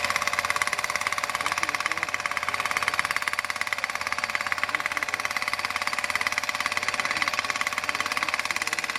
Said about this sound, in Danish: Og så sætter de den ovenpå, og så står de og holder den, og så hammer den ned. Det gør det med tryk. Det ser jo fuldstændig vanvittigt ud. Det gør det med tryk, tror jeg.